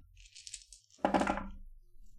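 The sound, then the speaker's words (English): A soft, hissy rattle of dice being shaken for a wits roll in a game, then a sharp clatter as they hit a table and tumble briefly before settling. No voices. “Give me a wits roll.”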